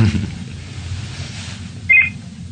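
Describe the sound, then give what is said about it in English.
A phone gives a short, bright electronic beep, a quick double chirp, standing out over a low, steady background rumble with no one speaking. “my phone, hang on.”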